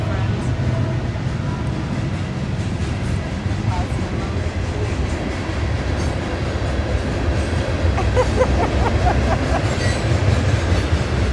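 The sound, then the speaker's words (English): A long train rumbles past on a Sunday morning in a steady, loud roar, with faint wheel squeals and clanks rising near the end; no one speaks over it. “Here's the train. Hello, train.”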